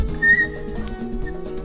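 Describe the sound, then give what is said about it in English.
A squeaky microphone mount shifts, giving one short, thin, high-pitched squeal, then a fainter brief squeak a moment later, over a low steady background hum. “Oh, my little trademark squeak there.”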